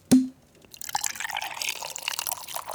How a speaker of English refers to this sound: pour some brandy.